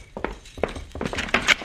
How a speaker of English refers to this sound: Hey, what that noise, Cisco? Coming from behind that door, Pancho. Sounds as if someone is kicking the door.